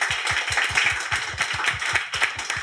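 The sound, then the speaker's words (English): A crowd applauds steadily, many hands clapping in a dense, continuous patter that stays fairly loud and even for the whole stretch, with no voices heard over it. “Well, I think a round of applause for Norman Lang, because he's got to shoot off now.”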